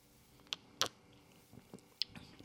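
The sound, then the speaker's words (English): A few quiet, wet slurps of a straw-yellow beer with a white head, short crackly sips spaced irregularly with faint clicks between them, and no talking. “Some good slurping ASMR for you.”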